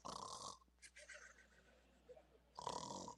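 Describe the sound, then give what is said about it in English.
A voice imitates the heavy breathing of someone who fell asleep standing up: two heavy, rasping snore breaths, one at the start and one at the end, with a quieter wheezy exhale in between, unaccompanied by talk. “Now, I probably wasn't snoring, but I was breathing heavy, no doubt.”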